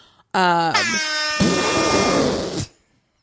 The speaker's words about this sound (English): I don't know why the air horn is a little like slow, like not just even from me pulling it up slow, but just it's sticky.